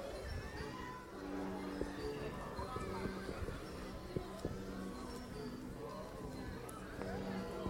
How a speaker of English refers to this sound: Actually, this might be perfect, recording at a distance. You can hear the noise of parties, birthday parties, and picnics, and... late lunches. of family time and friend time.